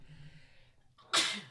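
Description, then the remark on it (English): A single loud sneeze, seemingly acted out by a person mimicking one: a faint drawn-in breath builds up, then a sharp, bursting 'achoo' that trails off briefly. “Or like sometimes when he knows there's a girl behind us in our cubicle, you know, he'll look back and like I gotta sneeze.”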